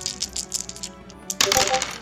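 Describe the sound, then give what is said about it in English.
Small hard dice rattle and click in quick bursts, then tumble and clatter across a tabletop in a louder, denser rush near the end, with no talking; the dice are rolled for a reflex save in a tabletop role-playing game. “Ah, there's the dice we know and love.”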